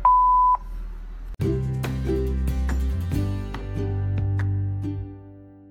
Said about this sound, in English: My friend can't come to the phone right now because she's busy reading Starshine magazine. But leave a message after the beep, and she'll get back to you when she's finished.